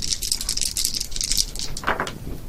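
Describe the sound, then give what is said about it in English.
Three dice clatter and rattle across a tabletop in a dense, rapid run of small hard clicks, fairly loud, lasting a couple of seconds with no voices, landing on three ones. “I rolled a mutant snake.”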